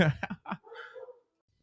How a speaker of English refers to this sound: Oh, the doggies are going crazy downstairs. We're going to need some doggy daycare in a little bit, these crazy asses.